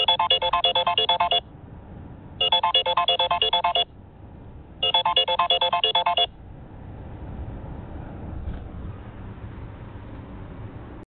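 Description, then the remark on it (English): A mobile phone ringtone for an incoming call plays three loud, bright electronic bursts of rapid warbling tones with short pauses between, then cuts off, leaving low background hiss and rumble. “I got a fucking phone call right here in the middle of the podcast.”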